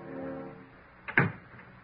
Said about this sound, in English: And as the door opens, he slips the gun into his desk drawer. Janet closes the door and steps into the room.